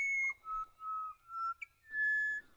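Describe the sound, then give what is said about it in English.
Pied butcherbird, a black-and-white bird about the size of a jay, singing at dawn in Australia: a slow run of pure, flute-like whistled notes, a high one, several lower sustained tones, then a long bright note, clear and loud with no talking. “Now we're hearing another of the beautiful dawn voices of Australia. The pied butcher bird.”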